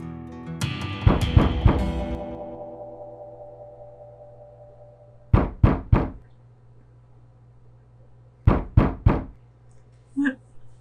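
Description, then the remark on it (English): Knocking on a wall, not the front door: an opening flurry of resonant raps, then two crisp sets of three firm knocks several seconds apart, fairly loud, with a faint extra tap at the end. “Is it the door?”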